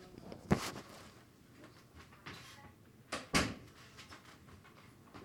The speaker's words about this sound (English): Sorry, y'all had to close the door.